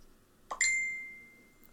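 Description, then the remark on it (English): A notification chime from a nearly dead phone: a soft plop-like onset followed at once by a bright, ringing ding that fades over about half a second. It is a single, fairly clear alert with no talking. “I usually have my phone on silent, but it was nearly dead, so I thought it would die before it dinged.”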